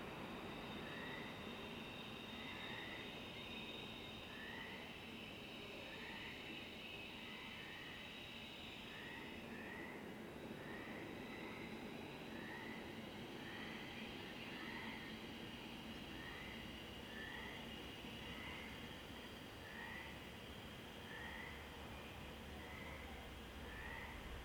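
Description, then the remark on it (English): A train travelling down the coast rolls steadily past with a dense, continuous rumble, faint repeated metallic squeals riding on top, and a dull shift in tone partway through as it heads into a tunnel. “A train slides into a tunnel of blackness below.”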